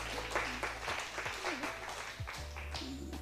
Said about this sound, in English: Yeah, you can just give the Lord a hand clap of praise if you want.